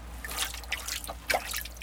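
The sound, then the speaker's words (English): A hand dips into cold water at Patrick's Well in County Limerick, Ireland, with soft sloshing and trickling followed by two sharper drips and splashes near the end. No one speaks. “Oh, lovely cold water.”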